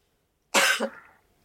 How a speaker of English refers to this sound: Apologies. Sorry. I had to cough.